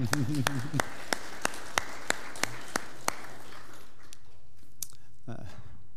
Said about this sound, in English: Amen. We can say amen in clapping.